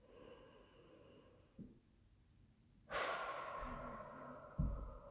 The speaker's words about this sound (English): If you gotta go in a closet, if you gotta go in a corner, if you gotta sit right where you are, let's just take a moment to breathe. Just deep breathing.